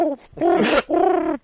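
A voice imitates a pigeon's cooing: two drawn-out, warbling coos in quick succession, fairly loud, with a brief breathy rasp between them.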